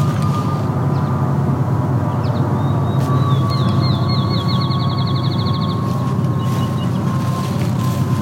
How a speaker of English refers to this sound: There's also more airplanes here, so this is... You can now hear some airplanes.